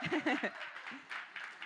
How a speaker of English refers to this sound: I see my dad in the first row. I'm really happy that he is here. You can give him a hand clap.